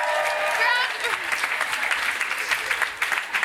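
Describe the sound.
Audience applause, a dense, steady patter of many hands clapping that keeps going for several seconds, with a brief cheer or voice rising over it at the start.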